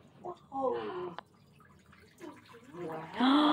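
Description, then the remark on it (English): A voice imitates water glugging into jugs with a series of throaty, bubbly gulping sounds, fairly loud, with a brief click and short pauses between bursts. “And then they began to fill up their jugs. Glug, glug, glug, glug, glug.”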